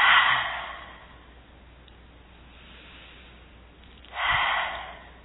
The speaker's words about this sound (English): deep breath in and out. One more time, deep breath in and out. Another one, deep breath in and out.